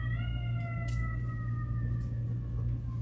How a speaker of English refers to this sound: I've never heard a siren that sounded like that.